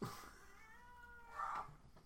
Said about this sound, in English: The demon cat speaks.